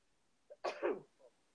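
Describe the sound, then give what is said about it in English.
A single sneeze: a quick little intake of breath, then a sharp, breathy burst, followed by a soft exhale. It's fairly quiet, with no talking around it. “I was about to sneeze.”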